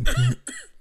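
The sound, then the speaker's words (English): A man coughs twice in quick succession, fairly loud, the first cough throaty and slightly longer, the second a short, sharper burst, with no talking around it; a male cough sound effect played from a Sounds of Men app. “Mal Cough.”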